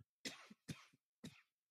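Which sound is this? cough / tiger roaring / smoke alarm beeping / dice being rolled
cough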